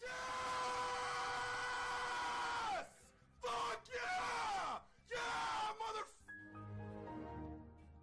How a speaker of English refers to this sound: He did scream at the top of his lungs, though, so that could have been it.